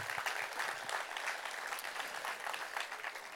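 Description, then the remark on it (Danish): Steady audience applause for the team captains before the start of a relay race in Denmark, many hands clapping at once in a dense, continuous patter that holds at an even level throughout, with no voices standing out. “Så jeg synes også, vi skal give holdkaptajnerne en klapsalve med her, inden vi starter stafetten.”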